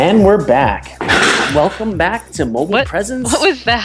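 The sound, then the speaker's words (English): A chair slides out from under a person and falls onto the concrete floor of an office with a short, loud, clattering crash partway through, over people talking. “That was my chair falling on the...”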